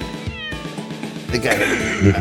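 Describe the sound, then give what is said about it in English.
A Mars Cat bionic home robot cat gives a short meow, then a louder, drawn-out meowing cry, with no one speaking. “Welcome to meet Mars Cat, a bionic cat, home robot. It's a cat robot.”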